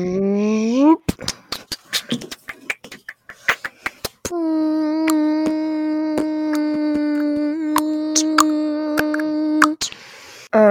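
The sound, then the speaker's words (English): A voice humboxes, humming and beatboxing at once: a rising hum, then a burst of sharp percussive clicks and pops, then a long steady hummed note punctuated by rhythmic beatbox hits. “Anyone, in case you don't know, humboxing is what I did like 30 minutes earlier. Basically humming and beatboxing at the same time.”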